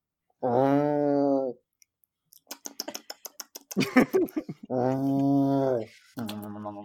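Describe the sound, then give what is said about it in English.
A person voices a low, drawn-out annoyed cat growl in three sustained bursts, with a quick run of sharp clicking sounds between the first and second. “You don't sound like a cat anymore. You sound like a rhino.”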